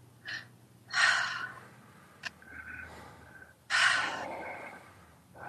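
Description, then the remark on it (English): Deep, forceful three-part breathing: a few loud rushing breaths, each a sharp intake in through the belly and chest followed by a long airy exhale out through the mouth, with quiet pauses between and no talking. “we're going to start breathing in a three-part breath. It's in through your belly, in through your chest, out through your mouth”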